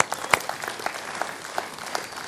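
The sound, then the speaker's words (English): An audience in a gymnasium claps together for the people who set up the chairs, a dense steady patter of applause with a few sharper claps standing out, moderately loud and sustained throughout. “I mean, we don't make people get here at 6:30 in the morning to start setting up all this stuff, which let's give them a round of applause, by the way.”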